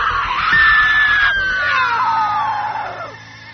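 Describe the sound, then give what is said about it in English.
A single loud, piercing scream from a voice actor specialising in screams, held for about three seconds at a high, strained pitch that slowly sinks before cutting off. No talking. “Developing this niche as a scream artist in voiceover has been really fun”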